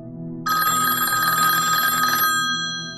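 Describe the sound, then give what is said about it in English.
A cell phone rings with a loud, steady electronic trill while people watch a movie, sustained for about two seconds before cutting off, leaving a faint tonal hum behind it. “Somebody's got their cell phone on, and it's going off.”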